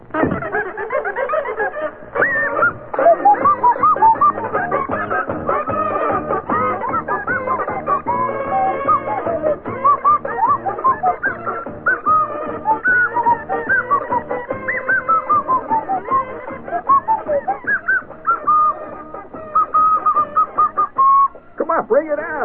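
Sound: nose flute being played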